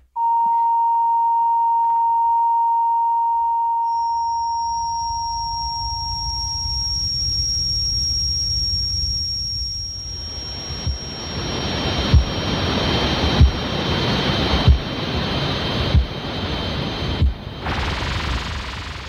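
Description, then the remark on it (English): Simulated tinnitus ringing, created by the British Tinnitus Association to simulate what people with tinnitus experience: a steady mid-pitched tone gives way to a piercing high whine that persists over a rushing, surf-like hiss, with soft regular thumps near the end. No one speaks. “Anyway, the British Tinnitus Association, they created simulations of what people with tinnitus experience”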